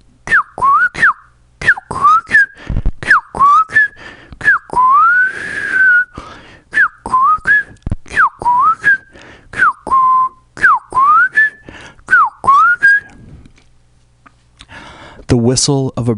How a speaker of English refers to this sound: The whistle of a bird, the whistle of a sine wave.